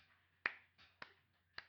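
Three sharp hand claps at a steady pace, roughly half a second apart, the first the loudest, with faint softer rustling between them and no talking.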